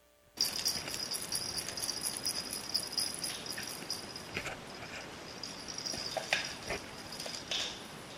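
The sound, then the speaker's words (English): A dog grabs and tugs at a toy, making continuous rattling and scuffling noises with a few sharper clacks partway through. No one speaks. “Dog takes the toy.”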